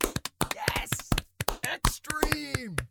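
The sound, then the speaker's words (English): Scattered, uneven hand claps from a couple of hosts applauding their bracket winner, the X Games experience, mixed with voiced whoops and cheers, ending in a long sliding vocal cry that falls in pitch. “But as we do at the end of every bracket, we're going to clap and applaud our winner, which is the X Games experience.”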